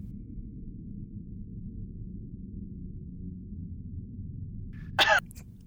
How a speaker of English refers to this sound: Just one cough after that. Awkward.